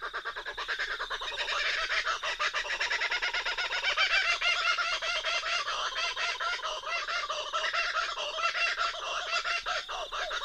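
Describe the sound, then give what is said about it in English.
A lone kookaburra laughs loudly and continuously at sunrise, its raucous cackling rising and falling in rapid, rhythmic bursts for the whole stretch, with no voices present. “That's just a single kookaburra bird. You usually hear bunches of them together, and we will.”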